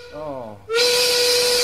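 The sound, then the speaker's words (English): A brief voice gives way to a loud steam whistle that bursts in abruptly, blowing a steady, shrill tone wrapped in heavy hiss and holding without a break. “I don't control the buzzer. No, we don't control the whistle, Australia.”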